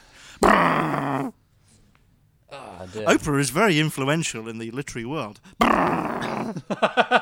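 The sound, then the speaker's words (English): A person makes a rough, drawn-out mooing noise imitating a cow, then talks briefly before letting out a second gravelly moo, both loud and strained. “I hope they know that I'm doing an impression of a cow.”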